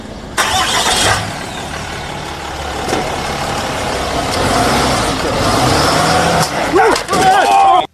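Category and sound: vehicle, truck engine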